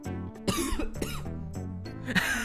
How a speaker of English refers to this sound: So every time you go, oh no, you cough after that, which is actually not happening. Which actually doesn't happen.